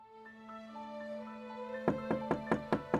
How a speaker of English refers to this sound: In the early morning hours of April 10th, 1836, Rosina Townsend woke up to a knock at the front door of her New York City brothel.